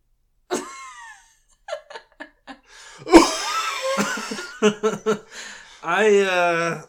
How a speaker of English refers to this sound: Sorry. I didn't mean to interrupt with the cough.